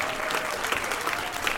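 A sustained burst of audience applause, dense and steady clapping from many hands filling the whole moment at a fairly close, even level with no one speaking over it.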